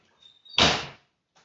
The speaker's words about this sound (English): Shut the door all the way when you got it. All the way. Pull it hard.